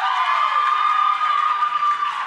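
A live show audience claps and cheers in a dense, steady wash of applause that holds at an even loudness for about two seconds, with a few voices whooping through it, applauding if they salt the chips at Mexican restaurants.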